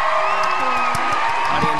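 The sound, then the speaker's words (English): A crowd applauds with dense, steady clapping, mixed with cheering and a few high whoops, loud and sustained for under two seconds. “Audience applause.”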